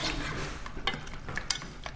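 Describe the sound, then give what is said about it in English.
Ingredients including soy sauce and pepper are pressed and smashed down in a pan to work the flavours in, with repeated scraping and stirring, a few sharper knocks of a utensil against metal, and a faint sizzle underneath. “Smashing it down there just to really get those flavours in.”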